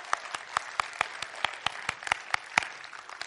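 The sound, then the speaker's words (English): Applause from an audience for two participants: a steady run of sharp, evenly spaced claps, about four or five per second, at moderate volume and lasting a few seconds with no voices over it. “Well, let's hear it for these two guys.”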